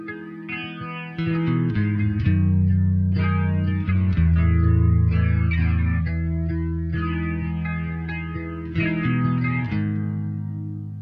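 A heavily processed, distorted rock guitar opens a song, thick sustained chords shifting every second or so, washed in chorus and echo, loud and continuous with no voices.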